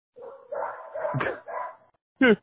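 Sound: dog barking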